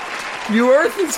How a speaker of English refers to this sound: They're drowning you out with applause. They're like, he's a genius. He's a genius.